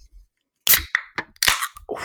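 A can being cracked open: a sharp snap of the tab followed by a few loud, hissing bursts of fizz and crackle, with no one talking.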